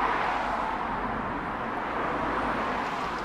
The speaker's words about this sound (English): sound of the cars amplified as it echoes under the arch.